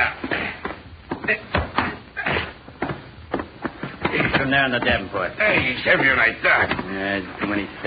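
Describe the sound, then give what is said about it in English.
A door is opened and shut with a series of sharp wooden knocks and thuds over the first few seconds, then people start talking. “Open the door”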